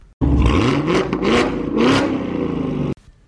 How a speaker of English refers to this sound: So, have you guessed the car yet? Well, if you're thinking it was a Mustang or a Corvette, at least with the Corvette, you wouldn't be far off. This is actually the sound of a Camaro Z28, or just a regular Camaro.